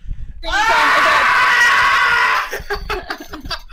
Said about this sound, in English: Yeah, was the sun screaming that? The sun was, I think, just screaming because it was brought to life by Starlight Glimmer of all ponies.